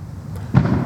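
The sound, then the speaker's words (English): A low, rumbling background suddenly gives way to a single booming firework burst outside about halfway through, loud and broad, with a rolling boom that lingers to the end. “Let's see if we can catch some Z's after the rocket's red glare is over. If it's ever over.”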